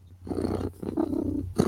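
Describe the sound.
A human voice imitates a cat's purr, a low rumbling vibration held in two or three steady bursts with brief breaks between them.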